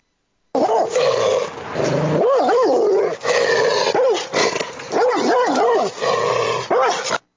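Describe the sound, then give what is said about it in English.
Several dogs bark and growl aggressively, a continuous loud snarling with repeated sharp barks in bursts and no one speaking. “Hey, get the dogs ready. Get them angry.”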